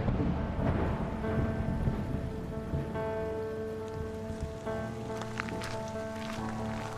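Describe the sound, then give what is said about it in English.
Heavy rain pours down in a steady, dense hiss that never lets up, with a low sustained tonal drone underneath and no voices. “In heavy rain the following day, the inquest convened on the banks of the Lanco River.”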